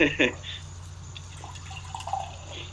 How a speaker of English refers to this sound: And, of course, she's pouring that into a tubby.